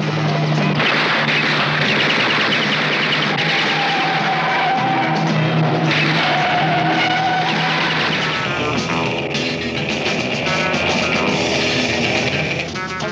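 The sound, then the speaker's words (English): Loud, continuous sports car racing by the character Diabolik: engines roar and rise in pitch as tires screech and skid, a dense rush of speed with no voices. “Master sports car racer.”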